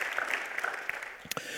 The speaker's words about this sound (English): Come on, you got to give the Lord a round of applause.